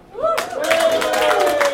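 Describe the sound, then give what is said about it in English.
An audience breaks into loud, dense applause that starts abruptly and keeps going steadily, with a sustained vocal cheer or whoop carrying over the clapping. “So just like by applause, who actually listens to this podcast regularly?”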